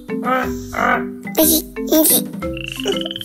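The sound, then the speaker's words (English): A voice imitates a frog, giving a run of loud, rhythmic croaks and ribbits, several bursts with short gaps between them, no other talk. “Suddenly, a frog crawled out of the pond and croaked. How does the frog croak?”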